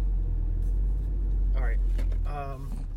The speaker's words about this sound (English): He's in his car again.